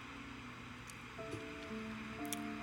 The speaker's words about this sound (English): Peaceful, serene music in the background, where you get to hear the sounds of the ocean